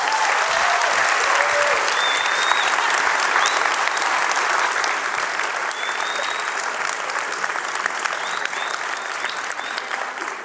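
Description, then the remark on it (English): Sustained applause from a sizable crowd giving a round of applause for staff, dense and steady clapping with a few faint whistles or cheers on top, holding strong for about ten seconds and tapering only slightly toward the end. “But I just want to have a huge round of applause for our awesome staff before I go.”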